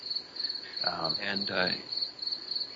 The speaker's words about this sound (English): So what you're saying is we've had a lot of this so far. It's been a lot of crickets.